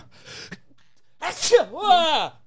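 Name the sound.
sneeze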